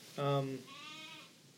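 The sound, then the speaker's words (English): Sheep bleating: a loud, deep bleat followed immediately by a higher, thinner, wavering bleat of a lamb, both short and heard alone without talking. “Yeah, the sheep are kind of mad.”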